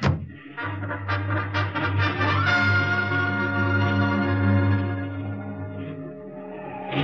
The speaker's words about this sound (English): That motorcycle ride through enemy-held territory with that car full of Nazis firing at me was wilder than the stories in the comic books I used to draw for.